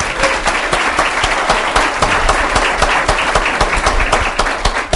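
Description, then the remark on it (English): A crowd applauds Bob Schieffer steadily, a dense wash of many hands clapping at once, loud and sustained for the whole stretch with no voices rising above it. “Let's give it up for Bob Schieffer.”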